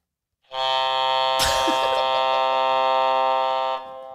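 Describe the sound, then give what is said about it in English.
A desk buzzer sitting on a desk is pressed and held, giving one loud, harsh electronic drone that lasts about three seconds, with a brief clatter partway through before it cuts off. “I was waiting to press this buzzer all week.”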